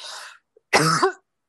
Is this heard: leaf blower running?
no